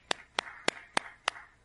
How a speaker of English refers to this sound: I'm clapping.